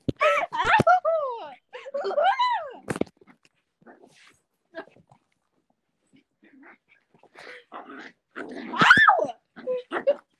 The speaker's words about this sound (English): ow! My dog just bit me. Was that your dog attacking you? Yes. Ow! Is your dog attacking you?